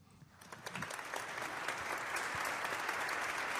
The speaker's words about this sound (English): Hand claps.